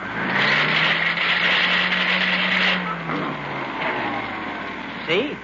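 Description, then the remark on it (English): A just-repaired vacuum cleaner with worn gears is switched on; its motor runs with a loud, steady low hum and broad hissing whine, wavering and sputtering unevenly partway through before chugging near the end. “I fixed your vacuum cleaner.”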